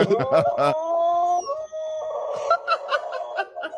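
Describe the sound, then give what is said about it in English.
A dog on a FaceTime video call with another dog over a computer lets out a few quick yelps, then a long, wavering howl that slides in pitch before breaking into choppier, fluttering cries, loud, with no one talking. “And this is two dogs doing FaceTime.”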